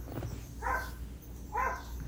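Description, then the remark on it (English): A dog barks twice, about a second apart, each bark short and mid-pitched, over a low steady background rumble with no talking. “Is that a real dog?”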